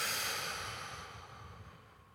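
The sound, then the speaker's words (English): A soft, breathy whoosh of air as a group of people exhale slowly together during a breathing exercise, starting fairly full and gradually fading over a couple of seconds, with no talking. “And exhaling.”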